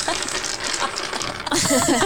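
A dense, continuous clatter of 13,000 dice rolling and rattling together, loud and busy throughout, with voices or laughter rising over the noise near the end.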